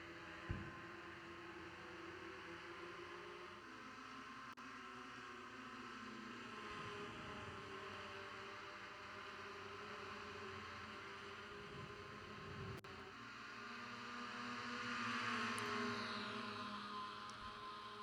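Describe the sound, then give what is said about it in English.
Race car engines roar steadily as the cars head into the first corner, their pitch rising and falling as cars sweep past in close succession, with a louder pass swelling near the end. No one speaks. “As we're about to hear these cars roar past us, going into the first corner.”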